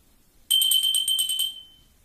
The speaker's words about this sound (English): Now that's my kind of bell ringing.